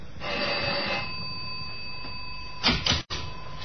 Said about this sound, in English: Up in the self-service elevator on the sixth floor. Find 6G and ring the bell.